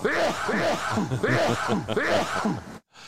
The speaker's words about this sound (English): That's actually me sneezing there, isn't it,